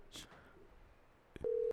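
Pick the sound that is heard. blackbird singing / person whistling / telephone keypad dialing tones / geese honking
telephone keypad dialing tones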